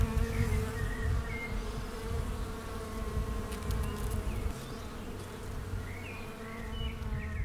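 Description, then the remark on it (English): Honeybees buzz steadily around a hive entrance and its landing pad, heard from a small distance, a dense, continuous droning hum from many bees coming and going, with a few individual bees flying past. No one speaks. “I sit at a small distance and watch the bees coming and going, dancing on their landing pad in front of the entrance, or dragging out the dead drones.”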